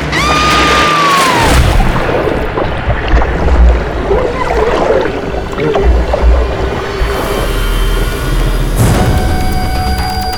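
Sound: boat moving through water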